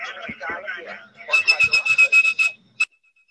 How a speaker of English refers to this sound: If you had perfect pitch like blind phone freak Joe and Grecia, you could whistle calls through the network. Let's see if I make it this time. This is really hard to do.